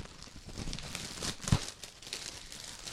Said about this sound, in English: So I actually got it, and while you're pulling that up, I will open it up. I will open it up because I just got it in the mail. I don't even know fully what it looks like, so I'm gonna open it up on the show.